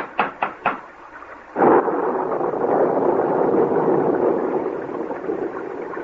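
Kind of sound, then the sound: nature, thunder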